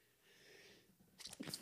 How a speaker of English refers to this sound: Excuse me. Two straight sneezes, audience. I'm allergic to something.